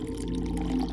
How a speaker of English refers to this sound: lifts his left hand and puts over his hand and down pours water.